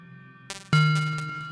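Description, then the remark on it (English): A steady electronic synth tone from a sine wave fed as input into a ring modulator hums with a metallic, bell-like overtone cluster, then jumps louder after a brief click, holding a bright, inharmonic ring that slowly fades. No voices. “Now let's use our sine wave as the input.”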